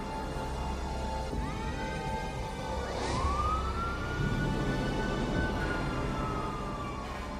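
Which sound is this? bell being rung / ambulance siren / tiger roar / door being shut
ambulance siren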